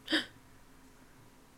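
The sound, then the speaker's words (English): Two people gasp sharply at the same moment, a single brief, breathy intake of air, followed by near silence. “For our audio listeners, we just gasped and stared at each other for a second.”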